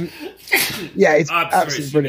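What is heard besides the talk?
sneeze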